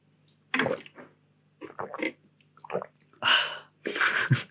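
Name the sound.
drinking water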